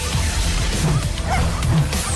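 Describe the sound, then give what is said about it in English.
A 4-month-old blue heeler cross puppy from Kalgoorlie, Australia, barks a few times in short, yappy bursts against a steady background rumble with no one talking. “This 4-month-old blue heeler cross is an Aussie icon who isn't afraid of getting down and dirty in the red dust.”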